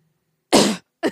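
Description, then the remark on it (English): Someone clears their throat right up close to the mic, a loud, rough burst followed by a shorter second rasp, with silence before and between. “If I have to clear my throat, I don't go... I'm like...”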